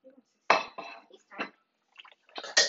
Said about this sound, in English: Just stop doing the dishes while we're doing the outro.